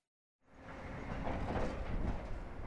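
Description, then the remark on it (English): Heavy trucks hauling uranium tailings for the Moab Uranium Mill Tailings Remedial Action Project on the banks of the Colorado River in Moab, a U.S. Department of Energy cleanup: a loud, steady low rumble and roar that starts after a moment of silence and swells slightly, continuing without pause; no one speaks. “Those sounds are trucks hauling material from the Moab Uranium Mill Tailings Remedial Action Project.”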